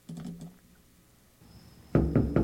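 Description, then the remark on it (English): A quick run of softer raps, a pause, then three loud, heavy knocks on a door, spaced evenly with no voices. “No, nobody's home. No, we're not answering the door.”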